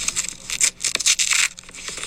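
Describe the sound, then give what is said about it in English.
A single sheet of paper, a one-page document on how long the coronavirus stays on surfaces, being torn in advance, a crisp ripping sound in several quick bursts with brief pauses, lasting about two seconds with no voices. “I'm going to pre-tear my one sheet, taking your coaching and your guidances very seriously.”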